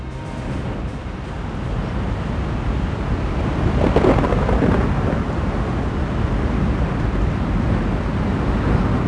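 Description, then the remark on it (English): A raging thunderstorm on the planet Doran with a constant low rumble of thunder and steady rain, swelling louder around the middle and staying dense throughout, with no voices. “The storms of Doran continue to rage around you, Castian.”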